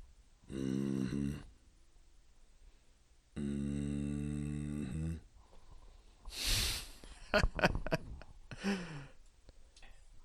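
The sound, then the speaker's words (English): Slow, heavy breathing of a cat named Cream Puff, squinting: two long, drawn-out exhales with a rough, voiced, almost snore-like tone, followed by a few quick snuffly, snorting breaths. No talking. “I see you there squinting at me. Slow breathing.”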